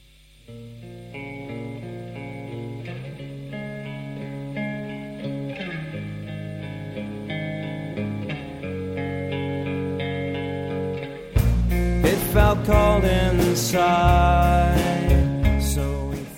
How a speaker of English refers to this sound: I mean, I love this song. I love the opening and the, you know, that reverb, the rawness, and in a way the whole song feels like it's about to fall apart any second, but in a good way. It's quite fragile